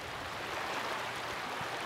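A steady, even rush of the Los Angeles River flowing past its bank in the Elysian Valley neighborhood of Los Angeles, continuing without pause at a moderate, fairly soft level with no voices.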